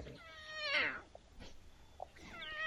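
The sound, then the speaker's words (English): A cat walking around lets out a loud, drawn-out meow that rises and falls in pitch, then a softer, shorter meow follows after a brief pause. No one speaks. “He's walking around practicing his little roar.”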